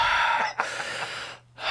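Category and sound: vocal imitation, imitated heavy panting breaths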